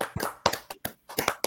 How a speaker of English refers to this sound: Yeah, let's clap it up for us.